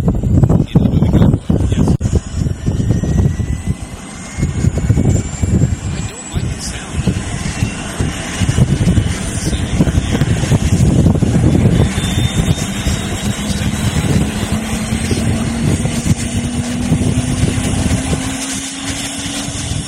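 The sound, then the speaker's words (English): A loud helicopter roars steadily, its engine whine rising slowly in pitch over a dense rumble of rotor noise, with buffeting wind gusts early on. “By voting on the sound of the helicopter, have we been doing that?”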